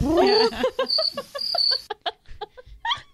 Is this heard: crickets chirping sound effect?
yes